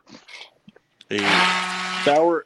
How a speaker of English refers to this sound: So that was what just happened. Yeah, somebody just fire the blender real quick.